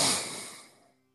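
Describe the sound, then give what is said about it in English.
A single forceful exhale through the right nostril with the left nostril closed, during a breathing exercise: a sharp, hissy rush of breath that starts strong and fades away over about a second, with no talking. “Closing left, breathing out forcefully to the right.”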